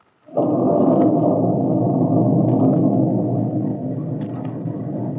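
A loud clap of thunder breaks suddenly as a storm begins, then rolls on as a deep, sustained rumble that fills the whole clip, with no voices over it.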